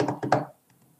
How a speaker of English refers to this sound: I mean, if I were to drum on this table, you know, whether I hit with the tips of my fingers or the palm of my hand, I'll get a different sound.